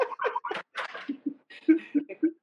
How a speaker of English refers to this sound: Sorry, my dogs.